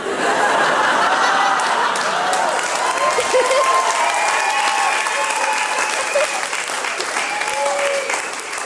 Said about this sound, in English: I love how you're clapping for my future, which is sad and dire.